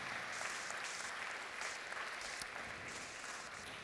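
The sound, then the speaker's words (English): A crowd applauds the setup and teardown team for serving, a dense wash of many hands clapping at an even, sustained level throughout with no voices breaking through. “Can we give them a round of applause real quick for serving?”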